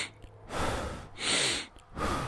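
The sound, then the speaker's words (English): Three heavy breaths in a row, each a broad airy rush with short pauses between, loud and right against a new microphone, with no talking. “It's such good quality that it's picking up on all my breaths.”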